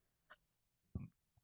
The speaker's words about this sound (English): Sorry, my water is making me burp.